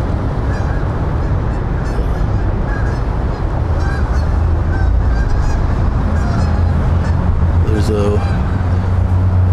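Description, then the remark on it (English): Geese honk repeatedly as they fly overhead above a wooded strip between drainage tunnels, their calls fairly clear above a steady low rumble of traffic, with a person speaking faintly in the background. “Edge of geese flying overhead.”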